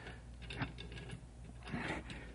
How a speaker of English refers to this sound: Hey, the ticking sound. Is that... That's what we're after,